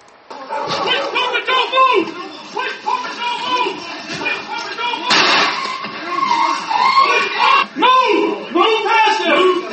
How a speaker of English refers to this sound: You hear the dog squealing? That just killed one of the dogs.